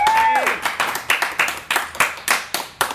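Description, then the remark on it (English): Audience applause for Jack Bernhardt, with distinct, sharp claps in a steady, fairly quick rhythm, moderately loud, after a brief falling tone at the very start. “The big round of applause for Jack Bernhardt!”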